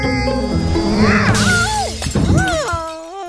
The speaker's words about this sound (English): Shattering the entire glass ceiling of the greenhouse into a million tiny pieces.